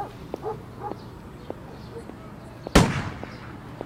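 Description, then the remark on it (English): A single loud gunshot cracks out and rings off in a fading tail, preceded and followed by several faint, scattered pops over a low background murmur. People are shooting wild goats and pigs that come into a city park to eat the grass. “Do you hear that? They're shooting the scavengers, the wild goats and pigs.”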